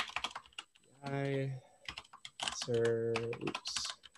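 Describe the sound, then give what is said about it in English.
Rapid, uneven clicking of keys on a computer keyboard, with two short stretches of a sustained voiced hum or drawn-out vocal sound over the typing. “Typing live is always an interesting endeavor.”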